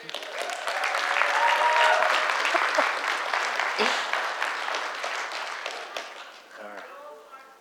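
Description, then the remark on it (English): A crowd of people claps steadily and energetically to celebrate good things that have happened in their lives, with scattered whoops and cheers mixed in; the applause thins toward the end as a voice starts speaking. “Real quick, short version, so we can clap and hoot and holler.”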